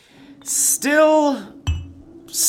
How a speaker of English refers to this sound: And then once you're done, we'll clink. Great. To celebrate the end of the cram session.